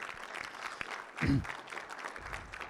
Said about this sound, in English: If last year God blessed you, go ahead, let's give the Lord a clap offering.